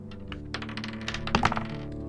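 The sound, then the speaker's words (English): A flurry of quick clattering clicks and knocks as dice are rolled for a perception check, tumbling and skittering across a hard tabletop, moderately loud, with a sharper burst of impacts near the end. “That dice is going to hell.”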